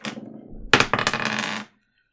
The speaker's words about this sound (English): Alright, roll D6.